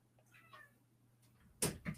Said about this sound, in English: Sorry, my cat is at the door. I'm so sorry. No, what a moment. Okay. My cat is at the door.